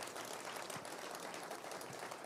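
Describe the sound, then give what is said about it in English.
An audience at a community conversation claps for the panelists, a continuous, dense, steady patter of many hands with no voices over it, holding an even, fairly soft level for the whole stretch. “They've been introduced already, but would you once again give them a round of applause and thank them.”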